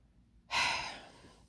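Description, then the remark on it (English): A single hard, exasperated exhale bursts in abruptly, a breathy rush that trails off over about a second with no talking. “As you can tell, me breathing hard, it's like something that just grinds my gears.”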